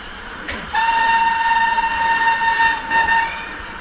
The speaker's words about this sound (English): And the loco's got a chip in it and so on? Yeah, loco's got a chip on it, so you have sort of sounds on the locos as well